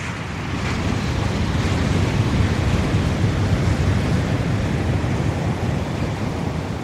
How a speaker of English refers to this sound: The day I visited the field research station, there was a 40-mile-an-hour wind blowing and 15 to 20-foot waves.